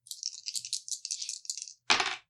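Dice are rolled for an intelligence check, rattling and clattering in a quick, steady run of bright clicks for nearly two seconds, ending in one louder, sharper clack as they settle. No voices.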